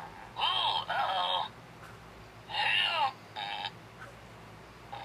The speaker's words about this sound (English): They're like these monster looking creatures. And you press their belly. Okay, this is the blue one called Bolt. He's purple. Well, blue is purple. Called Bolt. And they shake and move about the table. And it farts.